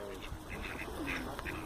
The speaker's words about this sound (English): Great day, take care, and these ducks are enjoying some oats. Don't feed them bread, oats are good.